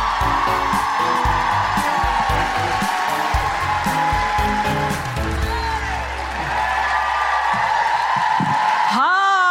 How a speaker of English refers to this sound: Are you excited to welcome them on the stage? Okay, start the clapping. Start the cheering.